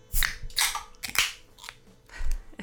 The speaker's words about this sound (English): grab your favorite drink, beverage, alcoholic, non-alcoholic, you know how we roll, and get it ready to crack with us.